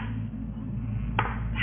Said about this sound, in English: If there is a spirit present, please confirm by knocking twice on the table.